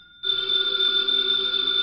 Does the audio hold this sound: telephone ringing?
yes